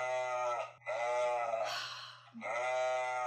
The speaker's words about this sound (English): this is just a little 24-second video of sheep noises that's on YouTube